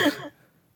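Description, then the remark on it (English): A single quick cough or throat-clearing burst, fairly loud, lasting a fraction of a second before fading into near silence. “Yeah, we're not going to make you sound like a just like an infected zombie type thing, just coughing.”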